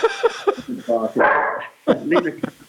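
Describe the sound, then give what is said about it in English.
A female poodle cross golden retriever barks and lets out a drawn-out, whiny vocalization, fairly loud, while people talk around it. “She's a poodle cross with a golden retriever.”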